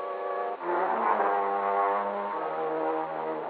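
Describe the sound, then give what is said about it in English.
A car engine drones steadily as the car is driven to Albany at night, its pitch shifting down twice like gears changing. No one speaks over the low, humming motor. “When a beautiful girl and a fortune are involved, well, instead of waiting until morning, I got out my car and drove over to Albany.”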